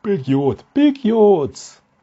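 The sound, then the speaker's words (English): A big, drawn-out yawn, its pitch wavering through a couple of stretched groans before trailing off into a short breathy exhale. “Big yawns.”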